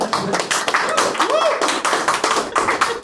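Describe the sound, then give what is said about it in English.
A round of applause from a crowd, dense and steady for about three seconds, with a brief rising whoop or voice cutting through partway. “I demand a round of applause.”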